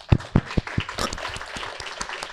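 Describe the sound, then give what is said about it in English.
An audience at a real estate investing panel claps, starting with a few sharp, loud claps that quickly blend into a steady patter of applause from many hands, settling at a moderate level. “Yeah, clap it up for that.”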